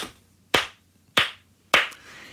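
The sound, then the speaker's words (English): Three sharp hand claps into microphones as a clap test for lining up separately recorded audio tracks. The claps are spaced roughly evenly, each a bright, loud crack with a short decaying tail, separated by near silence and no voices. “So what you do is something called a clap test.”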